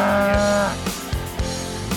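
A cow gives one loud, drawn-out moo, then a few sharp thumps and clatters follow. No one speaks.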